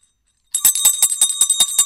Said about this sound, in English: Sleigh bells. We'll move from one thing to another. That's what we'll do.